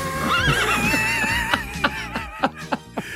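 A horse lets out a loud neigh: a long quavering whinny that breaks into a series of short, sputtering pulses before fading, with no talking.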